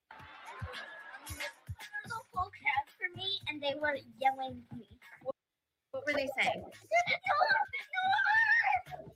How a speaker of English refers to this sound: So all these grown adults are cheering for this 9-year-old.